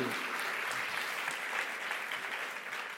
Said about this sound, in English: to the point that we'd probably be remiss of us to stare at me without just a round of applause and a cheer of going, yay, God's doing something awesome. So on three, let's celebrate something cool happening in our church. One, two, three. Woohoo!